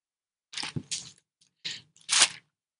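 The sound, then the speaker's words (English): Several crisp, papery rustles and swishes as thin pages of a paper Bible are flipped to find Hebrews 11:13, coming in quick bursts with short pauses between, fairly quiet with no voices. “Paper is slow.”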